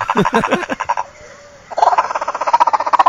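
A bird call that sounds like a frog's croak: rapid, rhythmic bursts of raspy, mid-pitched pulses, a brief pause, then another loud rattling run of repeated notes, with no voices.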